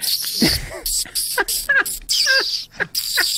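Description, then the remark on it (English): A dolphin squeaks and chatters in a rapid string of high, sweeping whistles and chirps, mixed with scratchy clicking bursts, fairly loud with no talking. “That's the sound a dolphin makes when you jerk them off.”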